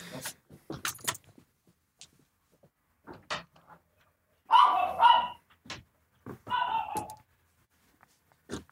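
A dog hiding under a bed barks in two short bursts, a few loud yaps, after some light clattering and jingling like keys being handled. No one speaks.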